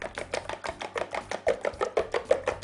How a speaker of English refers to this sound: I'm just trying to be careful not to get my eggshells in there. So I'm going to give this a whip.